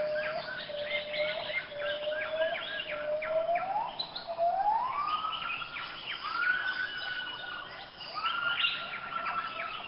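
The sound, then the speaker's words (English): Gibbons singing in a rainforest on the Indonesian island of Sumatra, recorded by a Rainforest Connection device: long, sustained hoots that swoop upward in pitch, repeating in a siren-like series, over a dense backdrop of chirps and buzzing calls, with no talking. “These are gibbons on the Indonesian island of Sumatra.”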